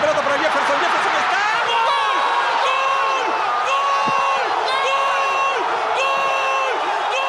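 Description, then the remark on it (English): A large crowd in Peru jumps, screams and cheers in wild celebration of Farfán's football goal, a dense, constant roar of shouting voices with rising and falling yells over the top, loud and sustained throughout. “In Peru, the celebration of people jumping and screaming after Farfán's goal was so intense, it activated an earthquake alarm detector in Chile.”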